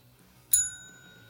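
A single bright bell ring strikes once and then rings out with a clear, sustained metallic tone that slowly fades over a low, quiet background hum.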